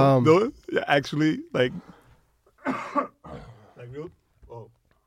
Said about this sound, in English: All right, so hold on, I'm about to cough.